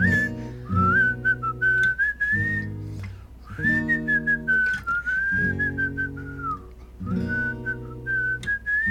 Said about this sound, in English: I can't whistle when I'm smiling, when I'm grinning.